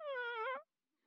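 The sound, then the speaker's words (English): A voice imitates a hungry five-day-old baby girl's whimper: one thin, high, wavering cry lasting about half a second, rising slightly then trailing off, followed by quiet. “And she let out this little whimper. And it wasn't like the wah! It was like this, literally like this.”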